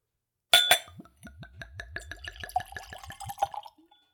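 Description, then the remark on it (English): A couple of sharp glass clinks, then whiskey glugs steadily from a bottle into a clean, tulip-shaped Glencairn whiskey nosing glass, the rhythmic gurgles rising in pitch as it fills, clear with no talking. “I am tasting it with a clean Glencairn glass. It's a whiskey nosing glass, tulip-shaped, lets you see the spirit, nose the spirit, and of course, taste the spirit.”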